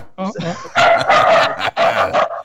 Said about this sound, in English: So like now my dog is all excited. What kind of dog is that? Shepherd.